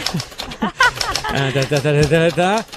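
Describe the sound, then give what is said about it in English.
A voice imitates old-fashioned typewriter typing: quick clicky clacks at first, then a sustained, tuneful vocal sound carrying the rhythm. Fairly loud, with no other background. “I imagine a guy over an old-fashioned typewriter just working away on this letter.”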